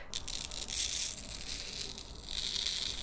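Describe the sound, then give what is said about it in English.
A soft, continuous crinkling hiss as fine manganese oxide powder is dumped onto a sheet of paper, the gritty rustle lasting a few seconds with no voices. “I'll have to dump some of it on this paper here.”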